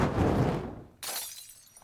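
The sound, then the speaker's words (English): A rumbling, roaring rush breaks off into the sudden crash of a glass bottle, a Molotov cocktail, shattering, its bright, tinkling fragments trailing off over the next second. No voices. “This Molotov cocktail is brought to you by communism!”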